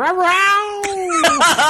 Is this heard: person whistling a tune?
no